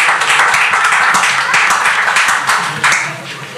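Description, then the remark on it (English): A crowd claps steadily for several seconds, a dense rattle of many hands with sharp individual claps standing out, staying loud throughout before easing slightly at the end. No one speaks. “Please clap for that. Clap for that.”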